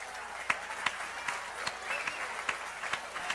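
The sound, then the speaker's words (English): A group of people applauding, a steady wash of many hands clapping with sharper individual claps popping out every half second or so, at a moderate, even level with no voices. “People clapping for this, man.”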